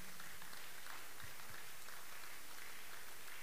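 A crowd claps steadily together for Jesus, a dense, even wash of many hands applauding with no voices rising above it.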